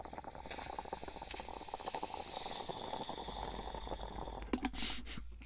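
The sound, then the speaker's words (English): Bubbling water from a cannabis hit on a silicone bong: a steady, rapid gurgle of small bubbles runs for about four seconds, followed by a couple of short breathy bursts at the end. No one speaks. “I don't take pipe hits, but I smoke out of a silicone bong that I got years ago that I can't break because I broke all my glass bongs.”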